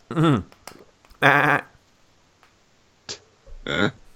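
A goat bleats three times in short, wavering calls, the first two loud, the last a little softer, with brief clicks in the quiet gaps between.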